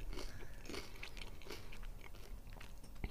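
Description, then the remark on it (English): Steady crunching as someone bites and chews a crisp cheese-flavoured corn chip, with repeated brittle cracks over about three seconds and no talking. “It's definitely got the crunch factor. I can hear that from over here.”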